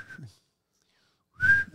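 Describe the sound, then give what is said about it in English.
A person whistles two short, steady notes separated by more than a second of silence, the second note louder and clearer, with no talking. “So now we're back to whistling.”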